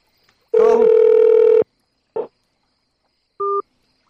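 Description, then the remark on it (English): A loud, steady electronic phone-line tone holds for about a second, then a short burst and a brief two-pitch beep as a caller's line drops. No one speaks. “I don't know what's going on with the phone line.”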